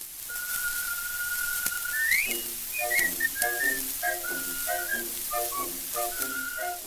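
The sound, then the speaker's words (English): A whistler holds a long steady note, glides sharply upward, then breaks into quick chirping, warbling bird-like trills over a soft accompaniment and steady surface hiss. “Years ago, artistic whistlers and bird imitation recordings were a well-known, popular form of entertainment on stage and on record.”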